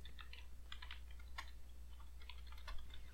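Rapid, irregular clicking of keys on a computer keyboard as someone does live research, fairly quiet, with a steady low hum underneath and no one speaking.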